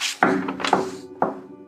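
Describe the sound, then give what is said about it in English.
Three firm knocks on the wooden door of a hut, made with a wing-like hand, evenly spaced about half a second apart, each a solid hollow thunk with a brief ringing decay, with no voices. “I use my weird wing hand thingy to knock on the door.”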